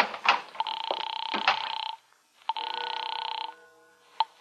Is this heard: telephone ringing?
yes